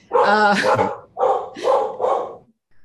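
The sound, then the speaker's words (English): Dogs bark in a quick run of four loud, tonal barks, the first drawn out and the rest short and evenly spaced, ending in silence. “And sorry, my dogs are barking.”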